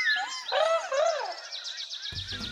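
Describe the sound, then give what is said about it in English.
Several birds chirp and whistle, with sliding calls giving way to a quick run of repeated high tweets, and a low rumble creeps in near the end. “Hey, would you all like some bird snacks? Chirp, chirp.”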